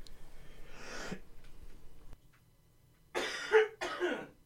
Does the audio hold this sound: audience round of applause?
no